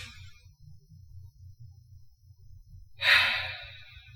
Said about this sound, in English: Okay. Wow, I just got to breathe for a second. For somebody who has probably about 25 minutes to do this, I need my tactical breathing in this moment to just get it together.